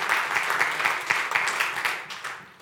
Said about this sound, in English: You can give the Lord a hand clap of praise. He deserves it.